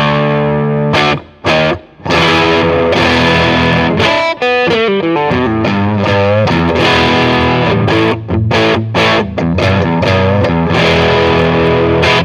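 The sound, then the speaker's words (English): Electric guitar played through a distortion pedal, a hot-rodded Boss DS-1 style circuit, with its extra crunch button engaged: thick, saturated chords and bending single notes, loud and sustained, with a few brief choppy stops near the start. “this is kind of like a hot-rodded version of the Boss DS1 kind of circuit”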